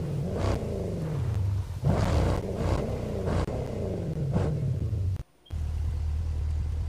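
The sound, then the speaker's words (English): A heavy truck engine rumbles loudly and steadily, with repeated surges of revving, then cuts out for a brief moment before the deep roar resumes. “I got a more durable truck. It's more stable.”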